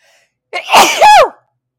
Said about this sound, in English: Ooh, I'm going to sneeze.